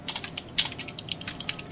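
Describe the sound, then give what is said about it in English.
Rapid keyboard typing while transcribing text and flipping between windows: a quick irregular run of light, crisp clicks with one slightly louder keystroke partway through, steady and fairly quiet with no voices. “Let me make sure the punctuation I'm transcribing is right. I'm flipping between windows as I do this.”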